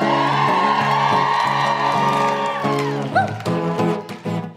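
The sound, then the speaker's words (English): A live audience cheers and whoops loudly, voices blending into a sustained roar. Scattered applause breaks through as the shouting fades partway. “Thank you for the claps.”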